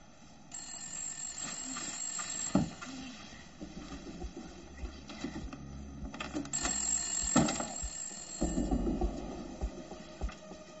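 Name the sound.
telephone ringing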